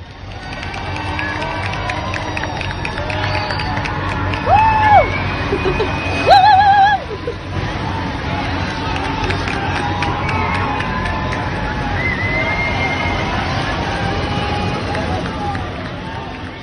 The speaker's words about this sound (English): As the royal mummy parade drove through Cairo, people watched from their homes. And as the coffins passed by, the people of Cairo began to cheer. Here is the audio from a video posted on Twitter.